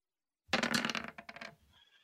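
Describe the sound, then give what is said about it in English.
A quick, loud burst of dice clattering and tumbling across a hard table, with a rapid series of clicks that slow and settle into a faint ringing stop. “I need some dice. Roll.”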